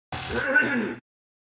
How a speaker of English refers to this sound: Hold on, let me make some gross noises and clear my throat.